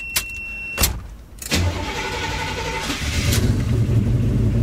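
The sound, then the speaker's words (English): An old car engine, its gas pedal first pumped to get gas into the carburetor, cranks with a few clicks and short bursts, catches at once, then settles into a loud, steady low rumble that swells as it revs, with no voices. “Patting the pedal to get gas in the carburetor. Before you start it.”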